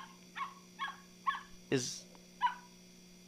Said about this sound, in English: What do you have there? A gift from Santa. A bark echoed from within the box.